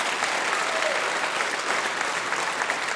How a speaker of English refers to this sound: Yeah, give him applause for that. I know you want to.